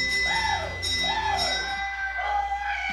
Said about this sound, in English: And the bell goes ring-a-ding-ding, ring-a-ding-ding, ring-a-ding-ding. Oh, Father Nathe, I'm not sure if you could hear that, but we had a bell ring. That means we got a substantial gift.